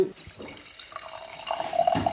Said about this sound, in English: you've just poured us some wine. What are we drinking? We're drinking Matassa Blossom.